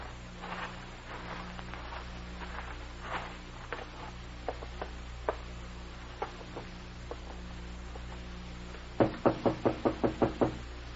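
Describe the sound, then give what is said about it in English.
Knocking on a wooden door: a few scattered, hesitant knocks, then a quick, firm run of about seven raps near the end, over a low steady hum. “No wonder he didn't come to the door.”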